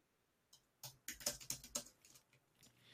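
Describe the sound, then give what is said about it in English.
Rapid typing on a computer keyboard, a quick irregular run of plastic key clicks lasting a couple of seconds, with no voices present. “I'm typing at the same time, so I wasn't watching you.”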